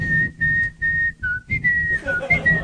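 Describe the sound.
A person whistles a short tune alone: a few clear, evenly spaced held notes, then a quicker run of shifting pitches, steady in volume.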